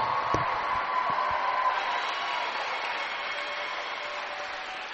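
A gym crowd applauds two seniors being recognized for wearing the Lions uniform, steadily for about five seconds, a dense, even wash of clapping with a few cheers mixed in, holding a constant loudness throughout without anyone speaking.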